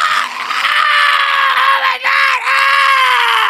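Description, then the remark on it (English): A voice imitates a man screaming in pain after sticking his penis in a pencil sharpener: one long, loud, high-pitched wail held for several seconds, broken only by a brief catch of breath near the end. “And he stuck his dick in the pencil sharpener. Oh my god! And he started screaming like.”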